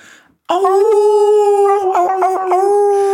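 A single long wolf howl sound effect rings out loud, holding a steady pitch with a few wavering breaks near the end, after a brief faint moment of quiet.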